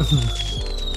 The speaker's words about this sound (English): This is, dude, let the fireworks go off.